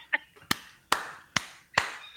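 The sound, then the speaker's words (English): Hands clap as a segment intro in a steady, evenly spaced rhythm, about five sharp claps in a row, fairly loud, with no one talking. “Why did we do a whole intro for it? Claps them out.”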